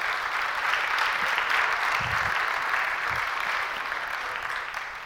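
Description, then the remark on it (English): Sustained audience applause at a Christmas pageant fills the whole stretch, a dense steady wash of clapping hands that holds level before easing off slightly at the end, with a few low thumps mixed in. “I think we need to give them one more round of applause.”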